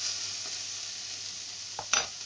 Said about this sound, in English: So we're just going to saute this for a couple of minutes. Really simple, really quick.